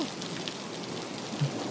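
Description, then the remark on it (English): Steady rain pours down in a dense, even hiss, with a faint low rumble of storm underneath and no voices. “Tell me, with this storm, are you safe?”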